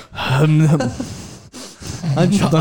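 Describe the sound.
Loud, close-miked heavy breathing: a few long, voiced, groaning breaths with noisy rushes of air in between, pressed right up against the microphone.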